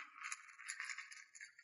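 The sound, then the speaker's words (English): Dice clatter and rattle continuously as someone rummages through them looking for a four-sided die, a soft, busy jostling with no one speaking. “What are you doing to my dice? I'm looking for another d4.”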